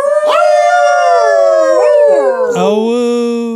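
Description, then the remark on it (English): A dog howls loudly, a long unbroken wail that slides up and down in pitch for several seconds, with a second howl overlapping near the end. “Howl noise.”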